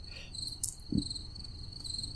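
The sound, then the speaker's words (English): A cricket chirps steadily in a high, thin trill from somewhere outside, with a soft low thump partway through and no voices. “Is that the cricket? Other than outside? Yes. That was bonus cricket.”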